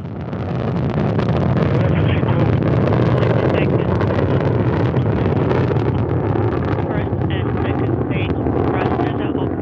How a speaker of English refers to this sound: Getting good first stage performance. That Soyuz delivering about 930,000 pounds of thrust from those four strap-on engines in the core.